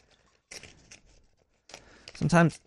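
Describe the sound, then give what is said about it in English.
Paper being ripped by hand, an envelope sent to a P.O. box torn open in two scratchy bursts of tearing, the second louder, ending with a short vocal sound over the rip. “Also, it looks like somebody sent me another another thing to the P.O. box. Check this out now. I need a letter opener.”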